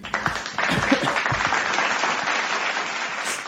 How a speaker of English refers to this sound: And let me give myself a clap for that.